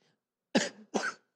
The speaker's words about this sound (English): And because I want that, that wasn't me coughing to big up my wife.